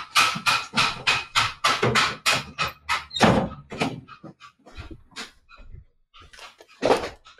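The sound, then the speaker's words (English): Meat being pounded: a rapid run of heavy thuds in a steady rhythm that slows into scattered, quieter knocks and a few final blows. “Yeah, you have every right to be banging your meat.”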